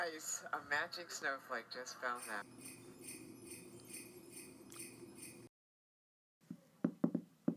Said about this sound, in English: Ooh, dainty knocking. That only means one thing. Mike Pence is here.